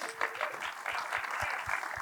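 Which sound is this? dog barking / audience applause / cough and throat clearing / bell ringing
audience applause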